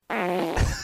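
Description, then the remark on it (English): A short, loud fart with a buzzy, tonal rasp that holds steady, then ends in a low, blubbery burst, with no talking. “I say we should celebrate the fart.”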